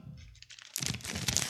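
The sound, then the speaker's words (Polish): Crinkly wrapper noise as an energy bar is unwrapped: soft rustling at first, then a louder burst of crackling, crunching plastic for the rest of the moment, with no voices. “Jem batonika.”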